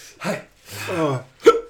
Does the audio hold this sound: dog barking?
no